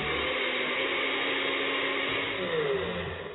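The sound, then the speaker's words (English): A blender whirs steadily as it purees beans with soy milk for an Alfredo sauce base, a dense, continuous motor roar churning through thick liquid, with a slight shift in pitch near the end and no talking. “So we're going to put them in the blender first.”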